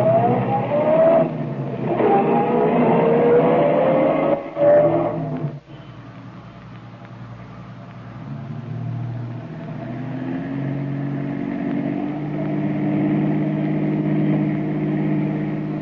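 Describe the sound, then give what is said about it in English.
Car engines in heavy city traffic rumble and rev, one accelerating with a rising whine early on, then settling into a steady drone that fills the whole stretch without any talking. “Traffic sure is heavy today.”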